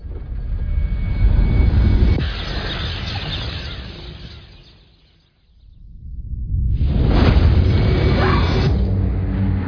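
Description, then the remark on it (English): A heavy, roaring explosion rumble from an asteroid fragment impact in Central Florida, deep and sustained, fading almost to silence midway before surging back loud and broad, with no voices. “We now are getting word that the fragment has hit Central Florida.”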